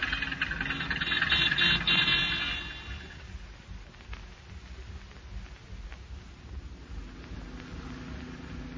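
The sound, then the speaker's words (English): A car engine rumbles as the car is driven slowly, a steady mid-pitched drone that swells briefly with extra hiss early on, then settles into an even, moderately loud idle-like hum. “Turn into the alley and park the car”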